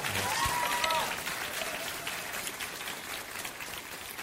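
An audience applauds steadily, a dense patter of many hands clapping at an even loudness, with a few brief tonal voice traces near the start that fade under the clapping.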